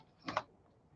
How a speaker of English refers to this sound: Someone type it for me because apparently I'm screwing up on my keyboard.